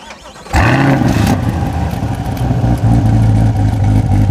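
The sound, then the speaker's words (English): A naturally aspirated car engine, with no supercharger, roars to life with a sudden jump in volume, then holds a loud, steady revving growl with clear harmonic tones, continuous with no talking. “what a naturally aspirated engine is? Naturally aspirated, there's no supercharger that's going to deliver power.”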